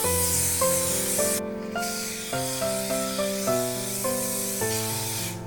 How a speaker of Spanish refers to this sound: Aplicamos spray desmoldeante a la bandeja.